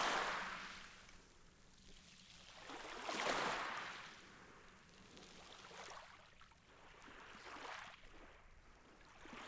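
Gentle ocean waves wash in and out on the shore, with soft swells rising and receding every few seconds. The sound is steady, with no voices.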